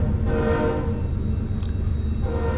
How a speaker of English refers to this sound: I love that train. Get that train about 11, 12 times a day. I love knowing that we're right here by the tracks where we want to be and where we need to be.